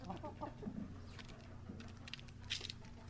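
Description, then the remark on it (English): Chickens pecking at food, with quick irregular taps and scratches mixed with soft low clucks and murmurs from the flock, over a steady background hum. “Speaking of birds, if you're lucky enough to own your own chickens, you'll recognize the sound of them pecking away at some food, giving them the fuel they need to lay their eggs.”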